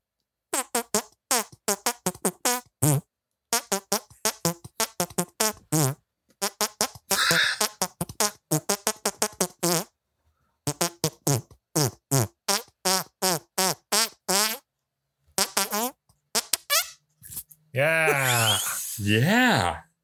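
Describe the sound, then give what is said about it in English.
A rapid, rhythmic run of wet, squelchy hand-fart sounds plays out a bouncy tune, with short pauses between phrases and a longer, buzzier blurt near the end. “With your wet hand farts in my ear.”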